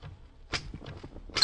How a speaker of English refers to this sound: That bell is on the typewriter. On the typewriter? Sure, see?